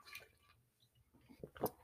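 Someone quietly sips a drink of water, with soft wet slurps and a short louder gulp near the end, and no talking.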